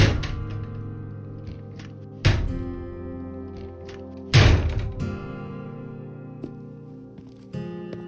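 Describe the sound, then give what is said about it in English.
A door is slammed shut three times by someone running out of the room, each heavy bang about two seconds apart and trailing a low ringing rumble, followed by a softer thump near the end. No voices. “He grabbed the doorknob on his way out, slamming the door 3 times and leaving it closed.”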